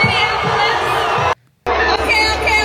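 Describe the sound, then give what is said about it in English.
A large crowd, giving thumbs down, boos a woman loudly and continuously each time she tries to speak, a dense wall of jeering voices that cuts out abruptly for a brief moment of silence before the booing picks right back up. “Every time she tries to start a sentence, they start booing incessantly.”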